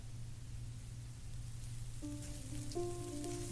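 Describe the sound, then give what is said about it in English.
A grill sizzles with a steady, even hiss and a few faint pops, over a low constant hum. Midway through, thin sustained tones join in. No one speaks. “I became aware of the grill again, sizzling and popping.”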